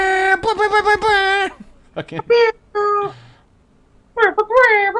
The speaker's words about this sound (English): Okay. Yep. That was 9 air horns. That's a big air horn. That's a block of air horns.